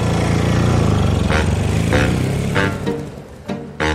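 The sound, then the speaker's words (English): A motorcycle engine rumbles loudly, revving with several sharp throttle bursts over a steady low growl; no voices are heard. It is a drummer's motorcycle being driven through the lobby of the Chateau Marmont hotel. “Drummer … apparently drove his motorcycle through the lobby.”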